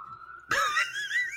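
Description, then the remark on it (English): A steady tone gives way to the wavering, rising-and-falling wail of an ambulance siren passing outside in Los Angeles at night, fairly faint, with no talk over it. “The ambulances have been going like crazy in L.A. tonight.”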